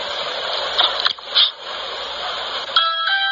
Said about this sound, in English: There's the mat. Here he goes to the doorbell.